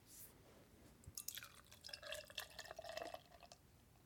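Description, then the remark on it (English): Beer pours into a Guinness pint glass, a fairly quiet stream of gurgling splashes and fizzy crackle that runs for about three seconds with no talking. “You know, I love the audio of a good clean pour into a glass.”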